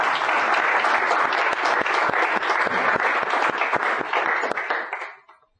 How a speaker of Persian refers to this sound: یه تشویق کنید تا بریم سراغ اسلاید ها.